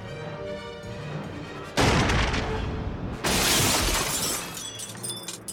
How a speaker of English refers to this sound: Yeah, that's I also love that during this scene where he's being shot,